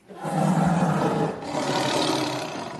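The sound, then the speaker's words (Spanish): Several voices give a loud, growling roar together, imitating a big cat as their traditional farewell. It swells twice in close succession, the second one raspier, with no other talking. “Despedirnos como solo nosotros sabemos hacerlo, con nuestro tradicional rugido, el bien conocido.”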